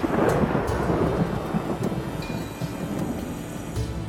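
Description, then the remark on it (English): Deep rumbling thunder rolls under a steady wash of heavy, unrelenting rain in Rome at the opening of the First Vatican Council, loud at first, then settling into a continuous downpour with a low, grumbling undertone. “Rome's naturally superstitious populace marveled at the unrelenting rain, fearing it was a bad omen for things to come.”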